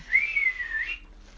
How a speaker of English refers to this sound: And, oh, this is the sound it makes without the attachment. It's like one of those whistles. Oh. I can't, like, that does that like sad, like, you know, yeah, guy can't get it up noise.